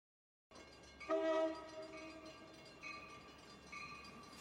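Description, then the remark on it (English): A train rumbles steadily while its horn blasts loudly in a sustained chord, followed by a couple of shorter, softer horn sounds over the continuing rail noise. “You are aboard the train to hell, stopping at Swindon, Walter Orton, Swaddling Coat, Hull, Rotten Eggs, and finally, hell.”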